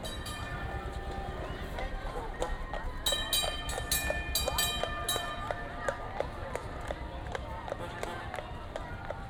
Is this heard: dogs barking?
no